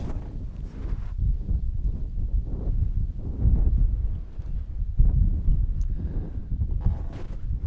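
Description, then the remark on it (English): Gale-force wind on a windy day buffets a microphone recording outdoors, producing a loud, continuous low rumble that surges and gusts in uneven waves throughout, with no voices present. “It's blowing a gale out.”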